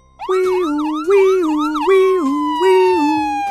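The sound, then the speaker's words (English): A loud siren of an ambulance driving up wails in a repeating rising-and-falling pattern, cycling steadily with a slight pitch drop toward the end as it passes. “Sniff saw an ambulance driving up to the doctor that lived next door.”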